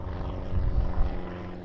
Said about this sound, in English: Wow, that plane is loud. Can you hear that?